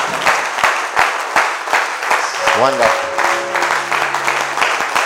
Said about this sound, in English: Hallelujah. Clap your hands together for the Lord. Somebody was trying to clap for Jesus.